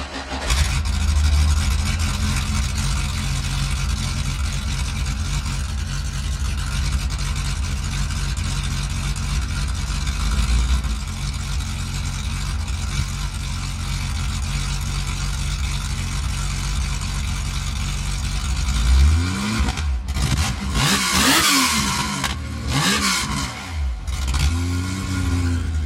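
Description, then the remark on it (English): A loud development racing car engine with intake trumpets and development camshafts gives a raw, throaty intake roar, idling roughly before being revved hard several times near the end, each blip rising sharply and falling away. “we changed the size of the trumpets on them for different torque curves”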